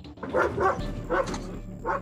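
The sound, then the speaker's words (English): A police dog from the canine units of city police and the RCMP, deployed in a search, barks in a series of four loud, sharp woofs with irregular gaps, each bark carrying a strong mid-pitched tone over a low, steady rumble. “Canine units from both city police and the RCMP were deployed.”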